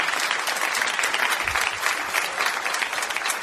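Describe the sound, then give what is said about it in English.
A large crowd claps steadily and densely, a continuous wash of overlapping handclaps for several seconds without any clear pause. “Y'all need to clap your hands.”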